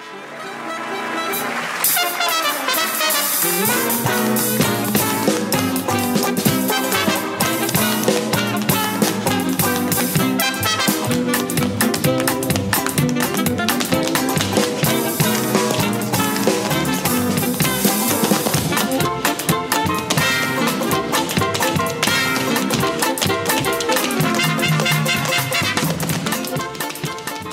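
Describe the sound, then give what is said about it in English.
A brassy, upbeat instrumental jazz tune plays at steady volume, with crisp tap-dance clicks sprinkled through the rhythm beneath the horns. “This is a perfectly diverting instrumental track with a splash of audible tap.”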